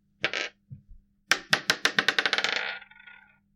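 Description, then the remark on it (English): A brief rattle, then dice tumble onto a hard table: a run of sharp clacks that quicken and fade as they bounce and settle, fairly loud, with no voices. The dice are being rolled to see who goes first. “You're rolling to see who goes first.”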